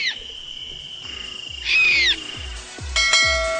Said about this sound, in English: And number 10, this sound is the common barn owl.